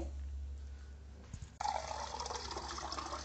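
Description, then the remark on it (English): After a moment of low background hum, a cup of water is poured, to be boiled for keto hot chocolate, with a steady splashing rush that continues to the end. No one speaks. “You get the cup of water.”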